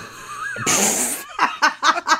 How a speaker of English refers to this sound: Okay, yes. Thank you for clearing your throat and breaking in.